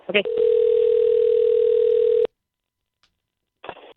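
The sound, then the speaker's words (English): A short blip, then a steady electronic telephone tone drones loudly for about two seconds as a call is dialed and rings, and cuts off into silence, followed by a brief voice at the very end. “Let's see if we can't get him on the line.”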